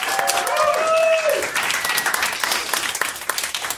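An audience claps steadily in a dense, continuous patter for several seconds, with a brief tonal whoop or whistle sliding downward near the start before the applause carries on alone.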